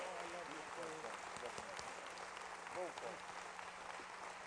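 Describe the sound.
Audience applause, a steady dense crackle of many hands clapping at once, with voices calling and talking mixed in throughout.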